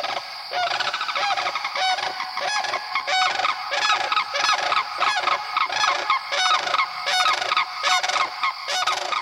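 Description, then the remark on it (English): Loud, rolling bugling unison call of a mated pair of sandhill cranes in the Okefenokee wet prairies during the breeding season, sustained and overlapping in a continuous clamorous chorus of guttural trumpeting notes, with no talking. “That is the unison call of the sandhill crane, given by mated pairs during the breeding season.”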